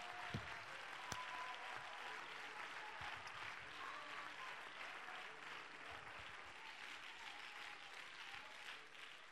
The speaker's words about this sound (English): Somebody clap your hands and magnify God.